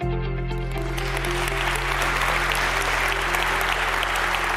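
A church audience at Community Christian Church applauds steadily after the announcements, a dense wash of many hands clapping at even loudness, with a low sustained musical tone lingering underneath.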